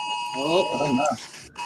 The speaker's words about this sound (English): Uh-oh, that sounds like a weather alert. It is. Tornado warning. Yes. Tornado's here at 4:30.